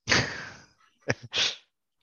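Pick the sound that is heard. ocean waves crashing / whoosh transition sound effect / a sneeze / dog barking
a sneeze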